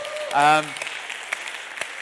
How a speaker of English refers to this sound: Should we celebrate the ladies of the church? Should we have a riotous round of applause for all the fantastic women of our church?